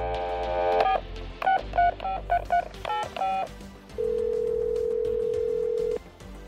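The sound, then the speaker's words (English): A quick run of touch-tone keypad beeps, about eight short dual-tone presses in uneven rhythm, followed by a steady two-second ringing tone on the line, as Dale Jr. places a call to Jake Wood of Team Rubicon. Clear, with no voices. “I'm going to go ahead and give him a ring.”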